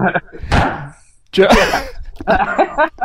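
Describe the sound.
A single loud, sharp wooden knock like a gavel being struck once, followed by a brief pause and then voices talking.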